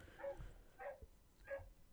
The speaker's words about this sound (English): Sorry, can you hear the dogs? I can hear the dog, but that's fine. So, apologies for anyone that can hear that. They're having a time.